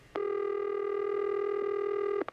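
A telephone line tone sounds steadily for about two seconds, a single buzzy mid-pitched note, then cuts off into a couple of quick clicks as a birthday prank call is placed on the radio station The Eagle, Houston's classic rock station. No one speaks.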